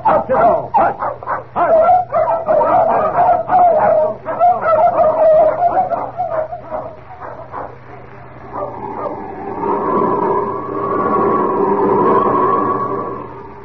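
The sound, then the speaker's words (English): A pack of sled dogs, among them Chico and Frisco, bark and yip excitedly in rapid, overlapping bursts, loud, as they are ordered to their feet to set off, before settling into a steadier, drawn-out whining chorus toward the end. “I'm going to take these dogs part of the way, just for the sake of appearances.”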